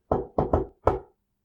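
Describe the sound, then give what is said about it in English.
Five solid knocks on a room door, fairly loud, tapped out in a friendly, lilting musical rhythm with an uneven pause before the last one. No voices. “As she did, the knocks came again. This time, 5 knocks in a friendly musical pattern.”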